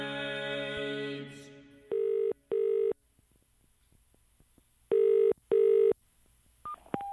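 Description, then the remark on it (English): Telephone line tones before a call to a phone in Earl's Court, London connects: a steady buzzing tone fades out, then paired ringing bursts repeat twice with a pause between, ending in a couple of short beeps. No one speaks. “Hello, we're recording the sounds of London through the telephone.”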